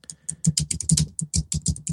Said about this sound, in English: I think my typing is getting louder. It's very loud. I love it.